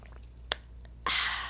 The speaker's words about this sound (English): Don't put it too close this time. Okay. A little bit further. Okay. Now I'm going to take a sip.